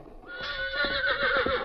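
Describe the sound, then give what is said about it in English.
A horse whinnies loudly, a long wavering neigh with a bright, shaky pitch, while faint hoof thuds pulse softly underneath. “Get his horse.”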